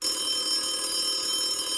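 A steady electronic ringing tone from a phone placing an outgoing call, holding evenly at moderate volume for a couple of seconds with no one speaking.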